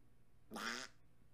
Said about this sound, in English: Did your ass just quack at me? What in hell? I don't like this.